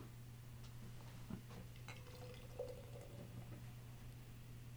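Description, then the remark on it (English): Beer pours quietly into a glass over a steady low hum, with a few faint clinks and a soft, gurgling fill sound in the middle. “oh, here, I'll put some beer in it.”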